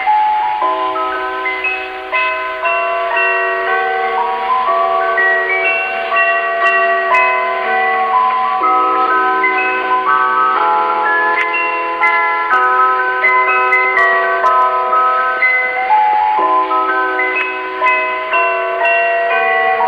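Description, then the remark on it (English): A chime plays a bright, ringing Christmas tune of overlapping bell-like notes, steady and fairly loud, with each tone lingering into the next. No voices accompany it. “It's a bit of a tune that I'll play on my chime that I've got with me here.”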